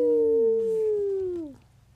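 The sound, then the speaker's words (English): A child's voice lets out a sustained, wavering howl that slowly falls in pitch, imitating a wolf or dog howling at the moon, fairly loud, then fades out. “Can you howl at the moon,”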